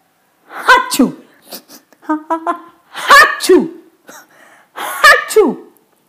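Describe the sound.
Three loud, drawn-out sneezes, each bigger than the one before, each a rising wind-up snapping into a sharp burst, spaced a couple of seconds apart with softer breathy sounds between; they sound theatrically performed by a voice.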